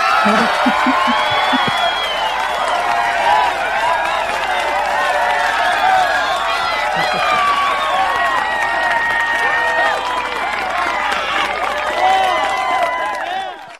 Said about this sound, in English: that is exactly how I wanted to end it up. With a round of applause for our PCB Always on Prime Time players.